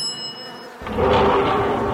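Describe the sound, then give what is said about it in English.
After a brief near-silence, a dense, droning buzz of a bee swarm surges in and grows louder, holding steady and close with no voices. “It's a humming sound, and it's getting closer.”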